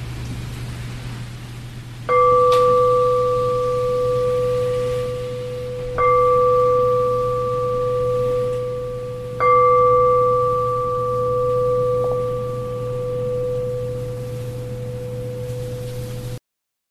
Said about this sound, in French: Je vais sonner la cloche pour ceux qui ont besoin d'être relâchés.